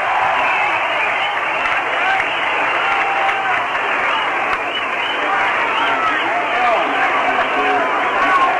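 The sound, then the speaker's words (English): A ballpark crowd applauds and cheers steadily for batter Mac Jones in the rain, a dense, continuous wash of clapping with scattered whistles and voices, loud and sustained throughout without a break. “Mac Jones will be the batter and listen to the hand he gets.”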